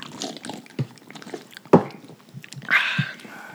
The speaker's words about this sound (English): I brought them a six pack. Let's cheers and give it a sip. See what's going on here.